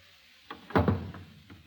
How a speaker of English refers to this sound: What's going on here? How'd that chair get knocked over?